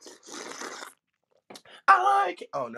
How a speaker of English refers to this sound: Let me take another sip of this tea. Hold on.